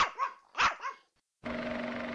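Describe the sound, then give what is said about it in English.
A dog gives two sharp barks in quick succession, then after a brief silence a steady, humming drone takes over to the end. “Like that one, puppies?”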